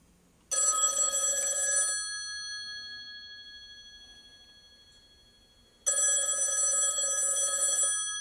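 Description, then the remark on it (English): Two loud bursts of an old-style telephone bell ringing, each lasting about a second and a half, separated by a long quiet gap with a fading ring-out, no voices present. “I'm going to open up the phone lines to you guys.”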